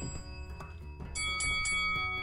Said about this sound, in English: Like, subscribe, hit that notification bell.